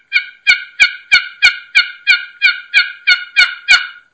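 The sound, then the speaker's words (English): A steady series of about twelve clear, choppy turkey assembly yelps made with short strokes on a box call, evenly spaced and fairly loud, with little rasp and no talking. “Yep, and because in those assembly yelps, there's not a lot of rasp to it. Yeah, it's just this choppy.”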